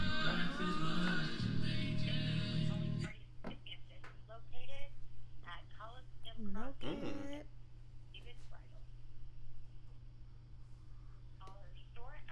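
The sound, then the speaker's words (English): A phone call to a store's customer service plays over a speakerphone, with a dense burst of ringing and dial tones for the first few seconds, then thin, tinny voices talk over a steady low hum. “Put it on speaker so we can have customer service.”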